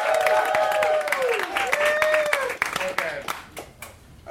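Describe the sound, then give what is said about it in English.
A crowd applauds and cheers a round-two competitor: steady, dense hand clapping, mixed with voices whooping and cheering over it; the clapping thins out and grows quieter toward the end. “Clap your hands”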